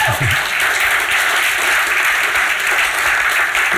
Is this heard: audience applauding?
yes